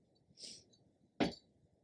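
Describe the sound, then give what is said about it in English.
Glasses clink together once in a toast, a sharp, bright knock that rings briefly, preceded by a softer airy shimmer, against a quiet, low background. “It's been a week. Cheers.”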